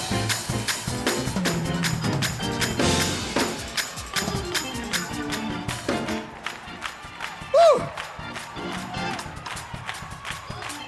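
A church audience claps loudly in praise during a sermon, in a fast, steady rhythm, with scattered cheers and a high whoop rising above the clapping partway through.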